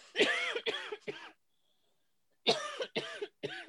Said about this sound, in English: I'm going to cough my brains out. Hold on.